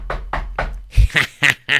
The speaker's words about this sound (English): All right. Now what? Let me knock on this door.